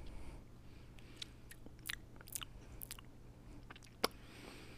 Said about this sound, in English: A lot of chewing again.